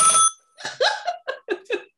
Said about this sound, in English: is that a landline? Ever get a phone call.